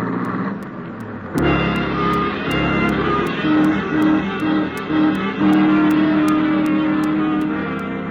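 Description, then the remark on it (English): A car engine roars loudly, revving hard through rising gear changes as the car races away along Sunset at terrifying speed, with a steady rhythmic ticking in the background. “The cars race along Sunset at terrifying speeds”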